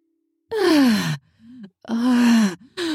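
A woman moans close and loud in long, breathy bursts with falling pitch, a softer murmur between them, and another moan beginning at the end. No words are spoken.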